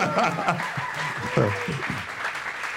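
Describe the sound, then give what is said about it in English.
An audience breaks into applause, a dense, steady patter of clapping lasting a few seconds, with a few voices and light chuckles mixed in underneath, clapping for a record reaching number 4 on Billboard's hip hop and R&B chart. “I was like, so, you know, y'all gotta clap it out for that.”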